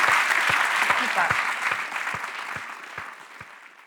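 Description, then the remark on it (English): An audience applauds Susie Dent steadily, a dense wash of clapping with a regular low thump about every half second underneath, tapering off slightly toward the end. “I think a round of applause for Susie Dent.”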